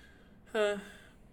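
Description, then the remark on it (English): A single short, voiced yawn from a person, a brief rising groan that trails off into a breathy exhale, with quiet background before and after. “Yawning. That's how I feel.”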